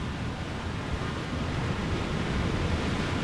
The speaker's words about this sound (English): From there, the water flies down a waterfall into another underground tunnel, clean and making its way to the Little Calumet River.